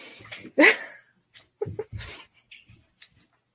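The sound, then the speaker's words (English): A dog makes a loud, rising whine-like yelp, then several shorter, softer bursts of noise spaced out over a few seconds. “I think there might be a dog interruption going on.”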